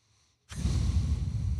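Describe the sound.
After a brief near-silence, a loud, sustained rush of air through the nose begins abruptly and continues steadily, a voice imitating a man's heavy nose breathing at the movies.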